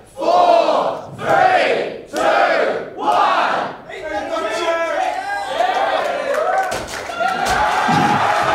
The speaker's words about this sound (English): Can I get a 5, 4, 3, 2, 1 from the crowd?